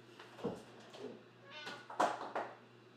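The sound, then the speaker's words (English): A cat meows a few times in quick succession, short plaintive cries rising and falling over a steady low electrical hum, not loud. “Can I have you just yell at the cat for something, yeah, for a real quick second?”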